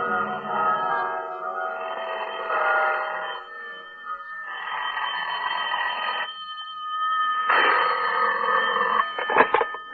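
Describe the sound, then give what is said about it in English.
A telephone bell rings in repeated loud bursts, about three rings separated by short pauses, with no talking, ending in a brief clatter. “That was when the bells started ringing in the Buddhist temple that had been built on top of the Mark Hopkins.”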